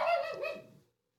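A single dog bark rings out, clear, trailing off within a second into silence.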